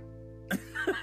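A cat meows once or twice over a steady low background hum, with a short breathy burst before a higher, drawn-out tonal cry.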